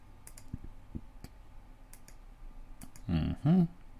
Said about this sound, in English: Mm-hmm. Clicking through the magazine here.